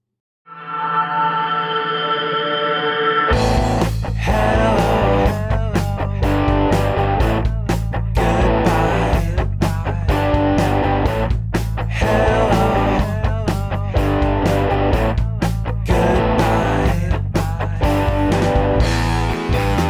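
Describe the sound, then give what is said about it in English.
A music track processed by the Flux limiter opens with a soft sustained chord, then a dense full-band section with a steady beat. Heavy limiting keeps the level flat while the mix audibly pumps and breathes. “Here's the track processed by the flux limiter.”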